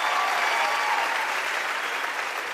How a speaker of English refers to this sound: I'm the first British comic on Def Comedy Jam. Clap it up. Clap it up. Yeah.